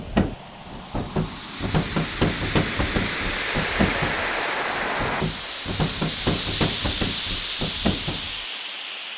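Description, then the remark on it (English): A loud, steady rush of storm wind roars throughout as the eye of the storm approaches, with rapid rhythmic knocking and rattling, as if something is being battered repeatedly. No one speaks. “The eye of the storm is approaching.”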